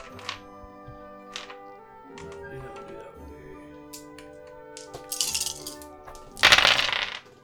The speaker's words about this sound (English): So shit, I'm just gonna roll dice. Alright, here we go.